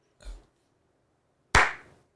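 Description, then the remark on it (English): A soft, muffled thump, then a moment later one sharp, loud hand clap with a bright, ringing tail. No one speaks. “You should clap from now on.”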